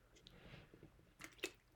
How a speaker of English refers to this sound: I'm going to take a little sip of water here just for a moment.